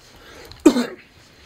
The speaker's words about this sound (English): No, I'm just waiting for whoever has cancer there to be done coughing. Me coughing. Sorry about that.